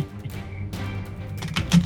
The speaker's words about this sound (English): Shuffle this deck.